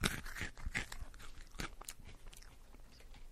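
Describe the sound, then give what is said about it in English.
Loud crunching and chewing of a crisp Malteser/Whopper malted milk ball candy with a honeycomb centre, several sharp bites followed by steady munching, no talking. “What's that crunchy thing?”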